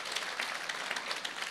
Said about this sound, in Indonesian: Berikan tepuk tangan bagi Tuhan.